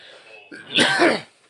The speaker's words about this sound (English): Oh, no, he coughed. That's not a corona cough. That's a blunt cough. Don't worry, guys. Drink some water and clear my throat up.